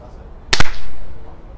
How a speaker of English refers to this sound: I'm just going to have to resync your audio. We'll figure this out. These are the growing pains, and I've got a flight to figure it out. Do we do another clap? Nah, it's fine. Maybe do another clap sync.